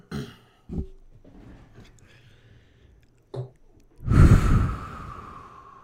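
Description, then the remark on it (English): Ragged, strained breathing with sharp gasps and short exhales, ending in a loud, forceful breathy outburst near the end; raw, with no speech. A person is breathing in pain after eating a spicy chip while trying not to cough. “Breathing out genuinely, like, causes me intense pain. I'm trying not to cough.”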